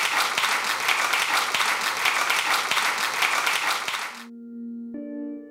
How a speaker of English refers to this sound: a big round of applause for Fred and for you guys